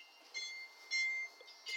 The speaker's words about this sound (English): Oh, there's the alarm. Just turning that off. Sorry about that.